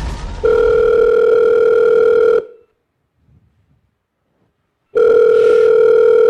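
A phone call ringing on the line: a steady, buzzy ringback tone sounds for about two seconds, falls silent for a few seconds, then starts again. No one speaks.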